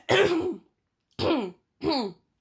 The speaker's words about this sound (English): I need to cough.